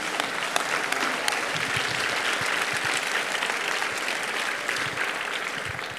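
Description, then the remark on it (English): A steady round of applause from a large standing crowd at a chapel service, applauding young communicators for their work; dense clapping that stays loud and even for about six seconds without any voices standing out. “If you would please stand to your feet and give our young communicators one more round of applause for doing an awesome job.”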